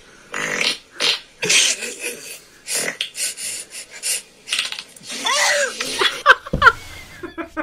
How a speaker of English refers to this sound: Oh, this one, a dog scared of a fart. This is awesome.